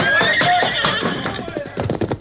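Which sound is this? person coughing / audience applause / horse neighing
horse neighing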